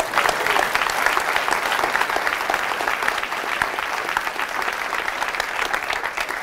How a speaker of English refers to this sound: So thank you guys for coming. Let's clap it up for each other.